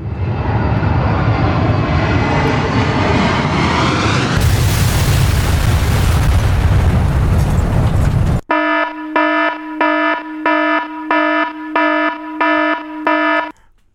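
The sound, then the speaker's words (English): A jet airplane roars in with a rising engine whine, then slams into the second tower of the World Trade Center with a loud, rumbling crash, followed by a pulsing electronic alarm beeping in a steady rhythm. “After hitting the time circuits again, the crew arrived in the same exact spot a half an hour later, crashing into the second tower of the World Trade Center.”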